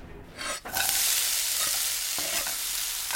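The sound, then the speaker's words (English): Bacon sizzling in a pan, cooked with beer-steamed mussels: a steady, loud, hissing crackle that swells in after a brief quieter start and carries on evenly to the end, with no one talking. “Make a little beer steamed mussels with the bacon.”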